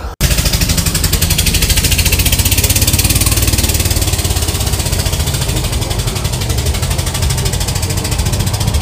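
A 1989 Subaru idles with a loud aftermarket 'fart kit' exhaust, a steady, rapid low-pitched rumble and rattle that holds at a constant level from start to finish, with no talking.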